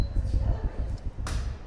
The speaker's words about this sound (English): Kiln going off.